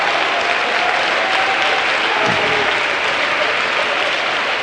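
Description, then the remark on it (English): An audience claps their hands in a dense, steady wash of applause, loud and sustained throughout without pause, with no distinct speech standing out above the clapping. “Let's clap our hands and ask God to talk to us today.”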